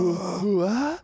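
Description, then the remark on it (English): A voice imitates a dramatic, anime-style gasp like characters make in old games such as Pokemon and Yu-Gi-Oh: one drawn-out, breathy vocal sound that rises and wavers in pitch for about a second, fairly loud, then cuts off. “And what they always do in all of those games from way back when, also in like Pokemon and Yu-Gi-Oh and everything, is expressing themselves through breathing, which you just don't get in other things.”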